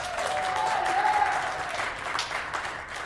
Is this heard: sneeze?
no